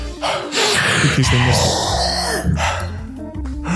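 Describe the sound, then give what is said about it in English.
Loud heavy breathing blown straight into a microphone, a continuous rush of breathy air with raspy, voiced groans mixed in, lasting a few seconds without any clear words. “He's doing a great job editing all of my heavy breathing, which hopefully we're not going to have this time.”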